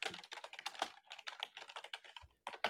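Rapid, furious typing on a computer keyboard, a dense stream of sharp key clicks with barely a pause, fairly quiet, with no voices.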